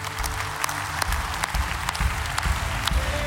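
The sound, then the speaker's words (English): A church audience at Celebration Church claps steadily for a few seconds, a dense, continuous patter of many hands with sharper individual claps popping out over a low rumble. “And in order to show that we're all together in this, I'm going to ask you to clap.”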